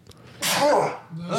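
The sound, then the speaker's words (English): A single loud sneeze bursts out with a sharp breathy explosion, followed by a brief voiced murmur as it trails off. “Bless you. Oh God. I saw that.”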